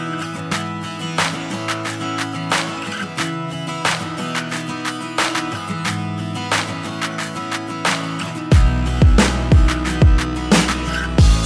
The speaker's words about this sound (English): this song is by me, your boy. It is called …